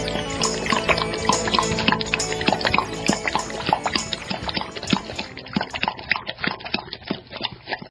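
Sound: water pouring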